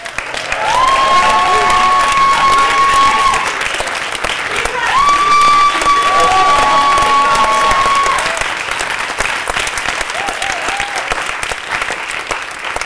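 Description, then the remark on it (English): A church audience at a revival service claps and shouts together to give God a shout, a sustained, dense roar of applause with loud drawn-out voiced cries rising above the clapping, holding steady for about twelve seconds before easing slightly. “Now, I need somebody to go out on the edge tonight, and I want you to clap your hands and open up your mouth. Do it all at the same time and give God a shout.”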